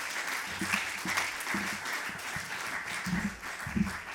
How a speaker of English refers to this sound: Sorry, rubbish introduction, but guys, can we give these amazing young poets an amazing round of applause, please?